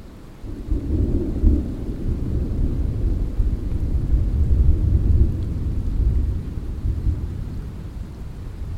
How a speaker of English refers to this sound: As we hiked up to rejoin the JMT, thunder cracked and lightning flickered.